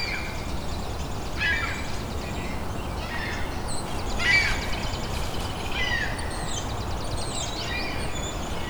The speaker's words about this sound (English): That's a ring-billed gull.